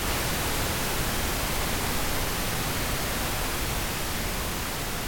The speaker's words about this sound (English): Her brain waves would have sounded like this.